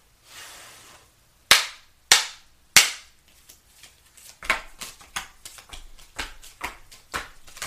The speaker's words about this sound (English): And then, if needed, I have a clarification tarot deck. But I haven't had to use it, though. And I'll use that if needed. Which, I'm finishing the pre-shuffle on the clarification deck right now.